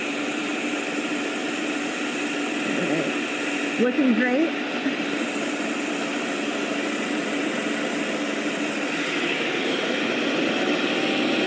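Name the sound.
blender running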